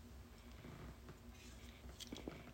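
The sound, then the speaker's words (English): A soft sip from a drink, a couple of brief wet slurping sounds near the end against a quiet background hum, with no one speaking. “Quick sip break.”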